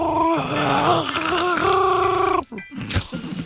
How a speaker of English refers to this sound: He's choking on his coffee again.